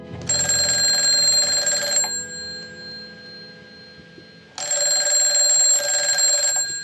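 An old telephone bell rings at home after dark in two long bursts separated by a pause of a couple of seconds, loud, with a faint low hum in the background.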